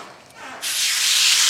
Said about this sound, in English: So we're getting ready to throw the steak in here. Hopefully it'll get some delicious sizzle noise.